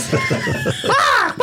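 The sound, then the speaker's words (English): A parrot squawks: a run of quick, choppy chirps gives way to a loud, harsh, high-pitched screech that bends downward before a final short squawk. “See, even the parrot agrees.”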